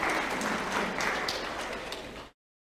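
A crowd applauds steadily, many hands clapping in a dense, even wash of sound that holds for about two seconds and then cuts off abruptly. The clapping is for a boy who correctly answered a question about the Bible.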